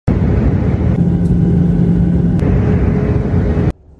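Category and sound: vehicle, car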